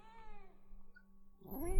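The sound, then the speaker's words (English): A cat named Kitty meows with a drawn-out, wavering cry, followed by a louder, rising yowl toward the end, with no talking over it. “Ooh, Kitty's here apparently too.”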